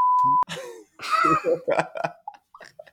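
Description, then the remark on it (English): A loud, steady censor bleep tone sounds for under half a second at the start, bleeping out a word, followed by voices making rough, laughing and coughing vocal sounds. “We got to bleep that.”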